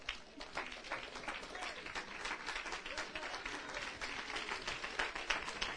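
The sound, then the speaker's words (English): A church audience breaks into sustained applause as a hand of praise at the end of a morning message, a dense steady wash of many hands clapping at once, with faint voices mixed in underneath. “Let's give him a tremendous hand of praise this morning.”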